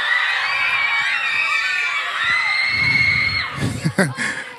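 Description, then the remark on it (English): A crowd of middle school students screams loudly and continuously, high-pitched voices layered together in a sustained roar that breaks into scattered shouts and yells near the end. “Middle school students doing what middle school students love to do. That is scream.”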